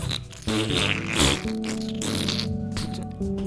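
A long, buzzy fart rumbles on for several seconds, fairly loud, its pitch wobbling and sputtering without a break.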